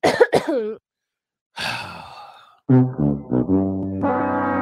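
A woman coughs in a couple of sharp, harsh bursts, then lets out a long raspy breath followed by strained, groaning vocal sounds, fairly loud with no talking.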